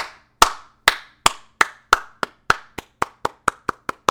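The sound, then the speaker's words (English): A single person claps about fourteen times as a round of applause for the cast, director and writers of The Boys Season 3. The claps come in a steady rhythm that quickens slightly toward the end, each one crisp and sharp, with no talking. “I'm giving a solid round of applause for the cast, the director, the writers, and even fucking Amazon, of all fucking things.”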